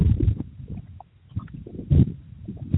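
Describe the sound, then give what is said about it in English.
Low, muffled rumbling bursts of wind on open plains buffet the microphone in uneven gusts, swelling and fading with a brief lull in the middle, loud with no voices. “Sounds pretty fucking windy out there”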